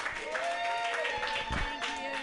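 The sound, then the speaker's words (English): An audience at a comedy show claps steadily for a couple of seconds to welcome the next comic, a dense patter of many hands with voices cheering and whooping through it. “Give it up. That means clap.”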